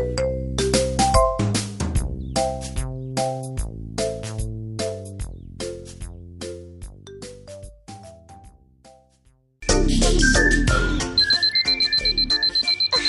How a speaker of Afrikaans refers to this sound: Wat gaan nou aan? Hoekom lei die wekker? Dis ek wat die wekker gestel het